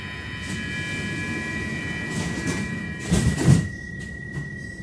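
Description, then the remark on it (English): A Pendeltåg commuter train travelling south from Stockholm, Sweden, toward Nynäshamn: a steady low rumble with a faint high electric whine throughout and a brief burst of louder clattering near the end, as if passing over rail joints. “Getting to Nynäshamn is super easy by Pendeltåg, and thankfully, you don't even need an additional train ticket to get there.”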